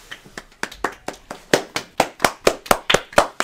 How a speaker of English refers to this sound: He is clapping in the distance.